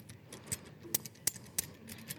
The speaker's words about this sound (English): Take this bottle opener. It does a whole bunch of things. It does percussion.